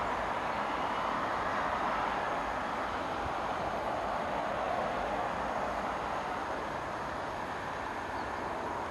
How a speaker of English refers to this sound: stand well away from the edge of platform 2. The approaching train is not scheduled to stop at this station.